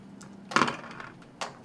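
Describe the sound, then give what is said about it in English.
Dice are rolled, coming up 11. There is a brief clatter as they tumble onto a surface, with a loud burst followed by a few lighter clicks and a final sharp rattle, with no talking. “Go ahead and roll those dice for me.”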